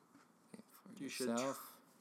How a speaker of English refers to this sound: In fact, I think we should bring out the scribbling of the paper. We should enhance the sound of it.